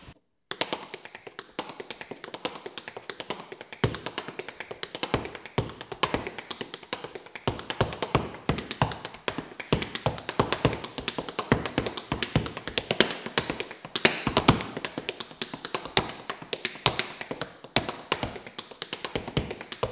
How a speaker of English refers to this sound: And so you have the potential for a tap dancer to do multiple lines while dancing. So you have a short rhythm, and then you have all the other notes in between it that you also play. So what'd that sound like?